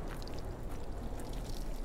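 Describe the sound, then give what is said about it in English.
Dishwashing soap bubbling over a leaking scuba gear joint that has come loose, applied to check for the leak: a steady fizz and gurgle with tiny crackling pops scattered over it, continuous for the whole moment with no voices. “I'm checking now with dishwashing soap. It'll make little bubbles if there's a leak.”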